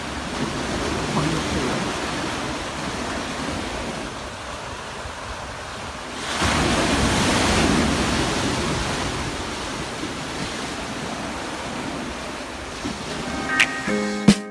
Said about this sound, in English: As we watch the waves in, roll in, and wash.